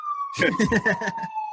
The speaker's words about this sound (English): Sirens going off.